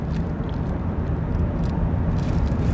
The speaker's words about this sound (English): Sorry, I had to take a drink of coffee because I'm in my car right now and I'm driving home from getting groceries,